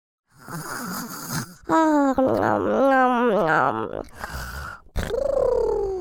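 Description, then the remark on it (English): A voice imitates a dung beetle's loud snoring, with a series of drawn-out, rumbling, cooing breaths rising and falling, each one strong and sustained with short gaps between. “The sound of the dung beetle snoring became louder and louder.”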